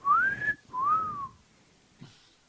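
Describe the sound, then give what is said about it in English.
A person imitates a two-part wolf whistle, like men in an alley whistling at women in yoga pants: a rising note that holds, then a second note swooping up and falling away, loud, followed by a brief soft noise. “Some fucking weirdos out there whistling at the chicks in the yoga pants.”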